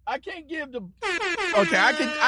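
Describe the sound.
A man speaks briefly, then a loud, harsh buzzer blares for over a second, a rich, rasping tone that wavers slightly in pitch before cutting off.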